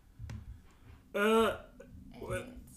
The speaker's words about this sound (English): Excuse me, sorry. Is that rude to burp on your podcast? No, I burp all the time.